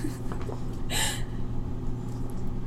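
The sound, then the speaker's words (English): A brief, breathy yawn rises once over a steady low rumbling hum, a short airy burst with a faint voiced tone, and no talking. “I'm gonna yawn. You're yawning?”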